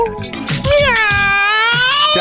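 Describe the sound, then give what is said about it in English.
A person loudly imitates a cat during a freestyle rap, letting out one long, drawn-out, wavering meow, preceded by a few short breathy bursts of voice. “Not only did you meow, you actually said the words meow like a cat.”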